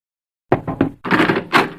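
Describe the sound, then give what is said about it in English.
Three quick, firm knocks on the wooden door of a judge's chambers, followed right away by the rattle and creak of the door being opened, with no talking. “the way it usually works is you knock, I say come in, and then you open the door.”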